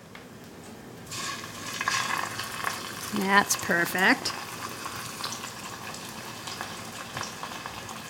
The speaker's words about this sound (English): Depending on how big your pan is, you either fry one or two cutlets at a time. You know, if you crowd the pan, they're going to steam and they're never going to brown. So let me add one more to the pan because my pan is big.